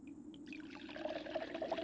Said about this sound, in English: He's got a bottle with him. He's pouring it on the egg.